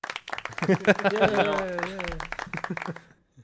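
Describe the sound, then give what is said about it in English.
A voice mimics applause and cheering for about three seconds, with rapid clap-like noisy bursts under a rising, wavering vocal tone that fades out at the end. “Insert sound good effect parody. Of that applause was... here.”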